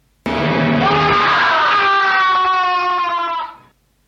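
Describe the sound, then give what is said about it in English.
A single loud, piercing scream from an early horror film bursts in abruptly and is held steadily for over three seconds before cutting off, alone with no talking around it. “It is not the Wilhelm Scream. No, it's scream.”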